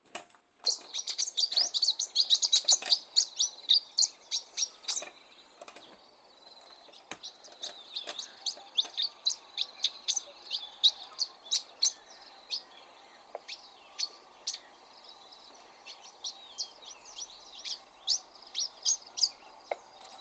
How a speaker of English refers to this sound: It's got a really specific call, and I can tell you now, I'm not going to try and imitate this bird, but this is what it actually sounds like.